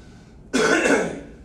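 A single rough throat-clearing cough bursts out, harsh and breathy, then fades quickly into quiet. No one is speaking.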